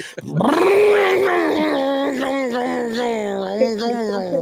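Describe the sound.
A person's voice imitates a race car engine revving, starting low, sweeping up in pitch, then holding a loud, buzzy drone that wavers and surges for several seconds.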